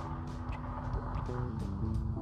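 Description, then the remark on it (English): A truck drives through a parking lot, its deep engine drone steady and loud with shifting low tones as it moves through, with no voices. “Sorry, had a truck drive through the parking lot.”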